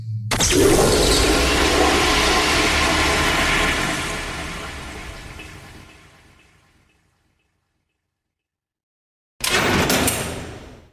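A magic outhouse toilet flushes with a loud, broad rushing roar that swells for a few seconds, then gurgles and fades to silence before a second burst of rushing noise starts abruptly and cuts off.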